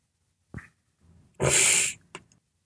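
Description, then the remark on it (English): A rough, raspy cough comes from a wall: a short throaty catch, then one loud, harsh, breathy burst lasting about half a second, followed by a brief faint rasp. “That wall just coughed.”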